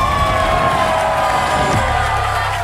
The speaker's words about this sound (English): How about that guy right there, Billy Napier, man? Listen, they're booing him because that's the visiting team.